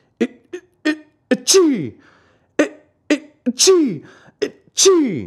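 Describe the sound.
A voice acts out three loud sneezes by Fire Eater in a reading of Pinocchio. Each one builds with a few short, catching inhales before bursting out, and the sneezes come at roughly even intervals.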